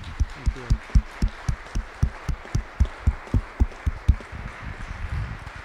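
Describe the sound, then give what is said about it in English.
An audience claps for the people who helped set up and prepare the event, in a steady, even rhythm, sharp bright claps roughly three per second, then the beat loosens into a softer scattered patter near the end. “And would you all please clap and applaud all those people for me?”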